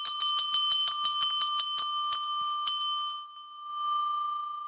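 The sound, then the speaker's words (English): A big bell rings loudly, struck about a dozen times in quick, slightly uneven succession over a steady ringing tone, then left to hum on its own after the strikes stop. “Now I have to break out the big bell.”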